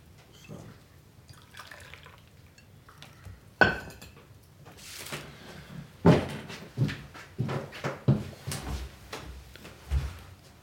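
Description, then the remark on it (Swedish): Coffee is poured into a cup, a soft trickle of liquid mixed with sharp clinks and knocks of cups and a pot being handled, with no one talking. “Ska jag fylla på kaffe?”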